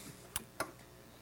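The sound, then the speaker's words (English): A clock ticks twice, two crisp, quiet clicks about a quarter second apart, with no voices and only faint background hiss. “he can also fix clocks.”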